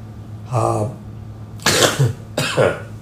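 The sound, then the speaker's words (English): Someone coughs three times in quick succession, a softer, rougher first cough followed by two harsh, breathy bursts, with no talking around them. “sorry about the cough.”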